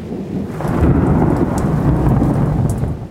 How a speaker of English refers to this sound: But we see lightning before we hear thunder, so it doesn't seem like they're the same thing. But they are. Light travels really, really fast, much faster than sound. So we see the lightning before we hear the thunder.